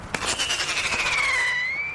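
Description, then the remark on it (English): A sharp pop sets off a shrill, screaming whistle from a pyrotechnic rocket shot from a cap gun into the night air to scare off crows, its pitch sliding slowly downward over a couple of seconds amid rapid crackling, loud with no voices. “Screaming rockets shot off from a cap gun zigzag into the night air.”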